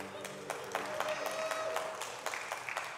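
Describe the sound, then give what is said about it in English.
An audience at Connect Sunday applauds in a dense, steady wash of clapping, with a few sharper individual claps standing out and a faint sustained whistle-like tone running through the middle. “All right, some of you have no idea what that is, but clap for it, okay?”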